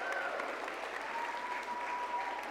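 An audience at a stage show gives a steady round of applause to the person who made boxes for the stage, many hands clapping in a dense, even patter that holds at the same level for a few seconds, with no voices.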